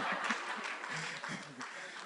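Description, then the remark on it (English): An audience at a church meeting applauds a group standing before them, with a steady, dense wash of clapping that lasts the whole two seconds, holding at an even loudness, with some voices and cheers mixed into the noise. “Please help me appreciate them.”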